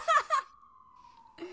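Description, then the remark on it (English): A loud emergency siren outside holds a single steady wail that sags slightly in pitch, heard between brief bursts of someone talking. “coming in with, like, sirens. Yeah. Sirens blaring.”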